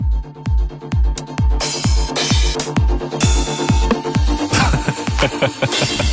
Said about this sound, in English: It's the sounds from the 909 drum machine that basically started this whole scene.